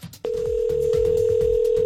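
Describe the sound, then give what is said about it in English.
A telephone line ringing as a prank call is placed for the Y107 Morning Show's Friday Phone Jacks: a steady electronic ring tone switches on abruptly after a brief pause and holds unbroken, fairly loud, over faint low rumbling in the background. “Redneck Robert on the phone. Here we go.”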